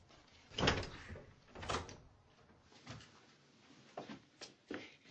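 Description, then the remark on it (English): A door, already open, is pushed as a visitor enters, with a few soft knocks and thuds, followed by several lighter clicks and bumps spaced out over a few seconds against quiet. “Hi, the door's open. Come on upstairs.”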